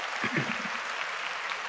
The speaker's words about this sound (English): All right. Round of applause,